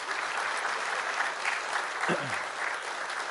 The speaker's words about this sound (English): I would like for us to give a round of applause to all of those families that just stood up.